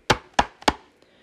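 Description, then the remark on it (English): Three firm knocks on a wooden door in a steady, evenly spaced rhythm, each a sharp, hollow thud that fades quickly, followed by silence. “Next, there was a knock on the door.”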